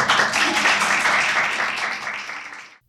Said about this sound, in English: Everyone else stood up and applauded.